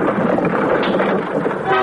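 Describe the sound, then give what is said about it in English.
A loud, sustained whistle from a streamlined train sounds over a dense rumble of rolling machinery, holding steady for about two seconds with no voices present. “The streamlined train.”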